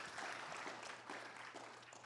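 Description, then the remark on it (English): A crowd applauds steadily, a dense wash of many hands clapping at once, sustained and fairly even throughout, with no voices standing out. “Why don't we clap for the... You know.”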